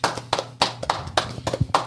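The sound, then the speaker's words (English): A short burst of clapping: about seven sharp, evenly spaced claps in a steady rhythm, moderately loud, with a faint low hum underneath and no voices. “Round of applause to that.”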